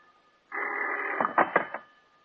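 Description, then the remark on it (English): An old telephone bell rings once in the darkness at 2 in the morning, loud: a steady metallic ring for nearly a second that breaks into a few quick rattling strikes before fading into quiet. “It seems like hours later when the phone bell cuts through the darkness like a knife.”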